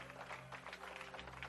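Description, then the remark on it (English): A church audience claps in praise of the Lord, a steady, dense wash of hand clapping, sustained and fairly even in loudness throughout, with a low hum underneath and no voices standing out. “Can we give the Lord Almighty praise? Hand clap of praise.”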